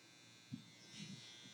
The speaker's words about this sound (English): What is that? That was a very angry dryer buzzer. Is it going to go off until we turn it? I think it was a dryer buzzer.